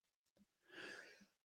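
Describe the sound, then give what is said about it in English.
A single stifled sneeze, a soft, breathy burst lasting about half a second, not very loud, followed by a sharp click at the very end. “Bless you.”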